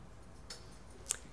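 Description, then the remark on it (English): A couple of faint metallic clinks as a set of keys jingles briefly, about half a second apart against a quiet, low background hum. “A welcome, a set of keys.”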